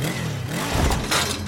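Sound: motorcycle engine revving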